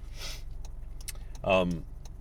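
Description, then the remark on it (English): A steady, low road rumble fills the whole stretch, like driving in traffic, with a few faint clicks and a brief voice rising over it near the end. “What is up with this traffic?”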